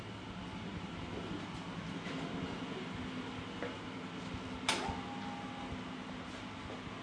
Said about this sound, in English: An original... A little platen printing press. And you can get some sound of this one too. Oh, that is quite beautiful. And the way that this operates... That's a well-oiled piece of machinery.